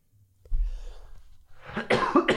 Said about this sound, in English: You're still coughing. I know. I'm sorry.